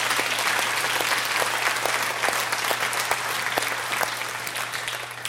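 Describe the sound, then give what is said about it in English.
An audience applauds steadily, a dense wash of many hands clapping at a constant level, with a low steady hum underneath and no voices. “We clap and we applaud because they're beautiful.”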